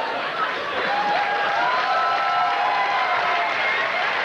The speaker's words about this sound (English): Then the audience applauds. They're happy to hear some swearing.